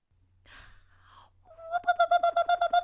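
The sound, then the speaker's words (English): A voice imitates a scream: after a couple of soft breathy gasps, a loud, high, wavering shriek rises and breaks into rapid rhythmic pulses, like a warbling alarm, with no talking. “can you give me the scream?”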